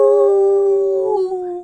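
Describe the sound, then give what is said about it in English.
A person imitates a wolf howl, one sustained, steady-pitched vocal tone held for over a second before dipping slightly and trailing off, loud with no other sounds. “Howl at the moon. Ow, ow, ow.”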